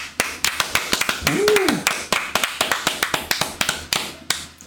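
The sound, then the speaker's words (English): A small game show audience claps for the contestants at the end of the show in a steady run of sharp, uneven slaps that continues throughout, with a single brief rising-and-falling whoop of cheering near the middle. “Please clap. They're cheering for you.”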